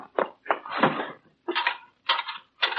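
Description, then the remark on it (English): A wooden drawer of a chess table is pulled open in a few scraping bursts, the chessmen inside rattling and clattering, with brief pauses between each movement and no voices. “Then where are the chessmen? In the drawer of the chess table.”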